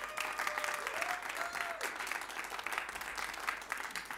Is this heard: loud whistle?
no